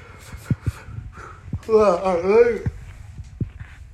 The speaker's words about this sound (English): That yawn was because, you know, it's we had a fascinating story, obviously. Yes, that yawn has a story behind it.